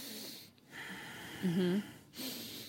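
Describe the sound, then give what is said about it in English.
A voice imitates a deep inhaling breath: one short, drawn-in, slightly voiced gasp, fairly loud, with soft background noise before and after. “And we're hearing like inhale, like...”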